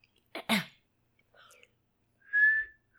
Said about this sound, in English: Wait, let me see if I can show you how bad my whistle is. Let me. Okay. I have to wet my lips a little.